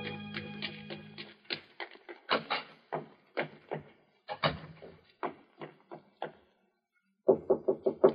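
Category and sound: impact, knock on a door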